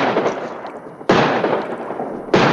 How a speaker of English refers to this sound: This dang blasted lock won't budge. Even shooting at it don't work.